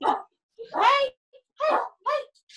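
A dog barks several times in quick, uneven succession, each bark short and tonal, moderately loud, with brief silences between them, inside an apartment in an apartment building where three dogs are kept.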